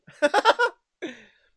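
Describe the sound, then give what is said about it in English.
A voiced burst of rhythmic pulses like a short laugh, then after a brief pause a single sharp hiccup that trails off quickly. No words are spoken. “Oh man, Oh, I got hiccups now.”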